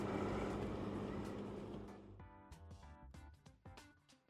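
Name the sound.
car accelerating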